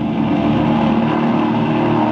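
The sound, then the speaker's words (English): The engine of the Grand Mystery Racer number 7 racing airplane, flown by Jim Lane, drones loudly and steadily as it flies past, a rough, buzzing roar with a low hum underneath that holds at an even level throughout, with no voices. “Here comes the Grand Mystery Racer number 7, flown by Jim Lane.”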